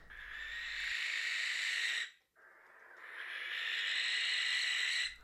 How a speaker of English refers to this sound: but maybe once upon a time, you know, back when people were much more superstitious about just about everything, a barn owl giving that blood-curdling screech in the graveyard you lived opposite was just that kind of classic ghost story, really.